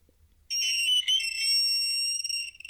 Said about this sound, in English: Yeah, that was a blackboard screeching. Yeah. That's what it felt like for everyone. That hurt my teeth through the internet.